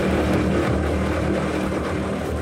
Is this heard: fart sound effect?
no